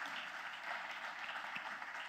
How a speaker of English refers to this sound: In fact, can we give a round of applause to all of our college students that are back with us? Yeah.